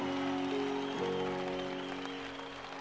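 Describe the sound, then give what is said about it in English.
An audience claps steadily, many hands blending into a dense, continuous wash of applause, with a faint sustained low tone humming underneath throughout. “You can clap your hands better than that.”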